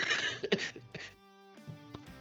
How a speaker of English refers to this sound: As I die with a COVID cough over here.